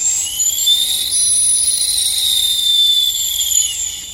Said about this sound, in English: So will you blow that whistle? So she takes it out of her shirt and she just gives him a nice